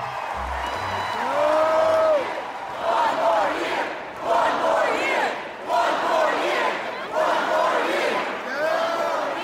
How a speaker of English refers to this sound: When it came time for Bridges, the crowd made one resounding plea.